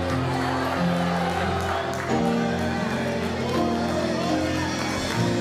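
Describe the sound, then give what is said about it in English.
A church audience erupts in loud, sustained shouting of praise to God and cheering, a dense wall of voices with whoops and scattered clapping, steady throughout with a few surges in intensity. “Now give God a shout of praise.”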